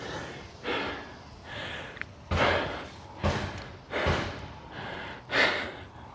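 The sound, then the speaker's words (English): Muffled, echoing bangs of metal being hammered next door as someone hammers out a dent in a garage: about seven heavy blows spaced unevenly over several seconds, with no one talking. “So I think that's him hammering out the dent in the garage.”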